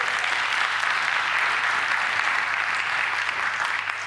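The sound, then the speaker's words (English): An audience claps steadily for a man who gave a testimony, a dense, even wash of applause that holds at a strong level for about four seconds before tapering slightly at the end. “just stand up so that people can sort of give him a little clap here.”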